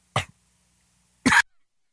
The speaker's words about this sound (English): Oh, I love when I start having coughing fits first thing in the morning.